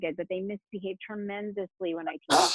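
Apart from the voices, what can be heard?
sneeze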